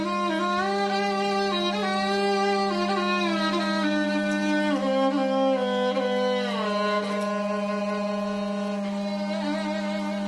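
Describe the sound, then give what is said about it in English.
A steady, loud low hum from a water pipe drones throughout while a man in a suit plays violin next to the pipe, long sliding notes over it, the pitches gliding up and down without pause. “That's the water pipe you hear humming in the background.”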